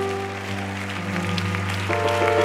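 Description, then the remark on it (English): An audience claps and shouts in answer to a preacher's call to clap and shout if they believe miracles will happen, a steady, dense wash of noise, held organ-like chords humming underneath, swelling slightly louder toward the end. “Come on, clap your hands and shout if you believe that.”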